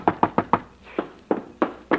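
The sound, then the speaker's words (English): Someone raps on a door, a quick run of four knocks followed by four slower, evenly spaced ones, loud with nothing else in the background. “If that idiot knocks on this door again, so help me, I'll open the door and tear him to pieces.”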